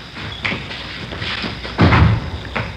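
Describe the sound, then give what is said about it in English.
A door is handled: a few light knocks and rattles, then a heavier thudding slam near the end, with no talking. “Here, I'll get the door.”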